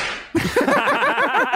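A swishing whoosh ends in a sharp whip crack sound effect, followed right away by bouncy laughter carrying on for the rest of the moment.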